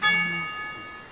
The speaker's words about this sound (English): Somebody must be new. We gotta really ring the doorbell. Come on in!